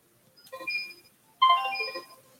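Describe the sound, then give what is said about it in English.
A phone that was not switched off goes off in two short, bright melodic bursts of electronic tones, the second starting abruptly and sounding a little louder, with no one speaking. “Excuse me, I didn't switch the phone off.”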